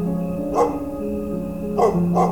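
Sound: stray dogs barking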